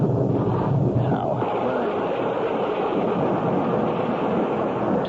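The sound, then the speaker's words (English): A steady, heavy downpour roars without a break, a dense hiss layered over a deep low rumble, loud throughout with no voices. “Damn rain makes it impossible to see.”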